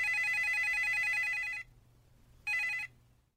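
A telephone rings loudly in the early morning with a rapid warbling electronic trill, one long burst followed by a pause and a shorter second burst, without any voices.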